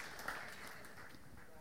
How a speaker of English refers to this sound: Yeah, you can clap for that, man.